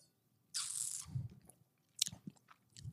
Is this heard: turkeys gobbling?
no